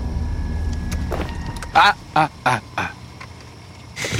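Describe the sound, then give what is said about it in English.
A truck engine idles with a low, steady rumble throughout, while a few short, harsh voice-like bursts cut in over it midway. “Turn the truck off.”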